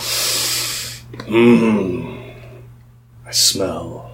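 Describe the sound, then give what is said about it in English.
A voice imitates loud, drawn-out sniffing as Vizcara lifts his head: a long breathy inhale, then a low voiced grunt, followed by a second sharp sniff and another throaty sound. “But it is at this point that Vizcara lifts his head up and you can hear him sniffing loudly.”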